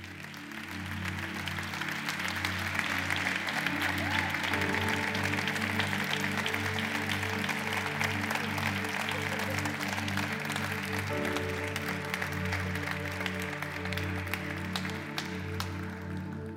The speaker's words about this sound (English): Come on, let's give God a good hand clap off. Hallelujah.